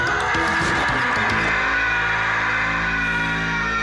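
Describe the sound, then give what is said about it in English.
A stock movie scream: one loud, strained cry that starts harsh and ragged, then stretches into a sustained, piercing wail lasting several seconds, with no talking. “You're not thinking of the Ah, Real Monsters scream, are you?”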